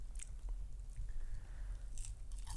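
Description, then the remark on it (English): Crunching as someone bites into a crispy, refried french fry, with a few sharp crackly bursts spread over a couple of seconds and soft chewing between them, without any talking. “Wow, it's so crunchy and I haven't even eaten it yet.”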